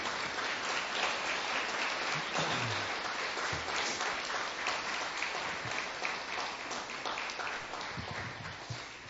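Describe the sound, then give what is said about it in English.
Sustained applause from an audience showing appreciation to a speaker as question time closes at a morning session: a dense, steady wash of many hands clapping at an even loudness for several seconds, with a few faint low thumps underneath and no talking. “He's been with us all morning and to this point, and we're just, again, I know we've done this twice, but let's show our appreciation to him again with a round of applause.”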